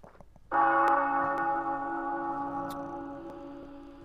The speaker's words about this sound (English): The bell has just tolled. I thought that was the Undertaker coming.